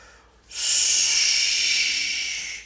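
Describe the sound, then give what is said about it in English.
A voice makes a long, steady hissing sound imitating a snake in the leaves, sustained for about two seconds and fairly loud, with no talking. “They walked and walked till the Gruffalo said, I hear a hiss in the leaves ahead. Shh, it's the snake, said the mouse.”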